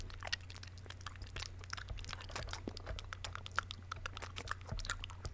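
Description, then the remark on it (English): Wet, clicky mouth noises from a tongue licking over teeth, a dense run of small smacks and crackles with no talking, fairly quiet over a low steady hum. “are you just licking your teeth? What are you doing? You're just making mouth noises.”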